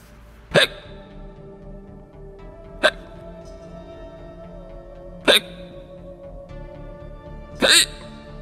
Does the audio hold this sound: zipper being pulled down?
no